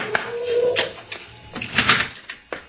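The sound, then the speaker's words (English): Knocking on the door of Sanchez's house: several sharp raps spaced unevenly over a few seconds, a couple bunched together, with a faint low hum in the background. “Hey, let me knock. What's the matter? Don't I know how to beat on a door?”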